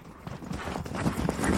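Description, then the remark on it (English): Horse hooves clip-clop in a steady walking rhythm as riders travel on horseback, a series of sharp knocks that grow slightly louder over the short stretch, with no voices present. “You spend most of the time on horseback, sometimes getting down to relieve the horses and give them a bit of a break.”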